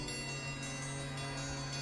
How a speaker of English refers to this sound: And then the dinner bell rings.